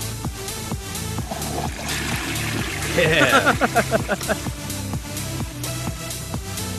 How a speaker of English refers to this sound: Don't you have a toilet flush sound? Oh, yeah.